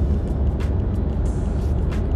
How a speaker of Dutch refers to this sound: Maar die Giulia van Alfa. Die zit nu achter me. Gaan we die nou halen? Ik wil even de motor laten horen.